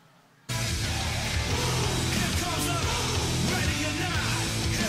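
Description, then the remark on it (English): After a half-second of silence, a loud 1990s metal song, used this week as the NFL's promotion theme song, bursts in and plays on steadily, a dense wall of distorted guitars and drums with what sounds like shouted vocals. “All right, so that's 90s metal.”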